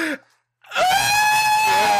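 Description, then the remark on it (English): After a short pause, one loud, shrill scream rises sharply and holds steady at a piercing pitch for over a second, intense, like a horror-film scream effect. “And so, you know what I'm talking about, that fucking scream from that movie.”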